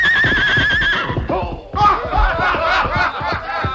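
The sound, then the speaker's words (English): A horse named Silver whinnies loudly as it bucks off a rider, a long wavering neigh followed by a burst of rapid snorting, high-pitched squeals and thudding, scuffling movement as it thrashes about. “A horse as good as this one looks to be won't like any strangers getting on him.”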